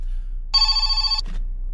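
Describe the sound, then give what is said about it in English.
A phone that was left switched on rings once in a short, bright, steady burst lasting under a second, fairly loud, followed by a faint rustle against a quiet hum. “Oh, I forgot to turn my phone off.”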